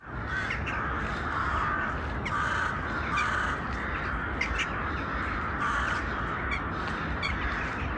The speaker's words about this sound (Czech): No a teď rychle za těma havranama.